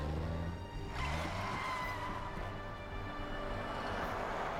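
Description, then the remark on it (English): A truck engine rumbles loudly and steadily while its tires squeal in a drawn-out skid as a woman drives it, with a thick, gritty roar of motion throughout and no talking. “You know, I would think he would be getting pretty upset with her driving his truck like that, though.”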